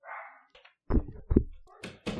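A small dog barks in a few short, sharp bursts, sounding somewhat muffled and mixed with dull thumping knocks, with no talking over it.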